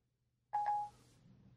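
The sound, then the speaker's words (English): A single short electronic tone with a steady mid pitch, about a third of a second long, a voice assistant's confirmation beep for a 20-minute timer, followed by a faint hum. “Our assistant is on it.”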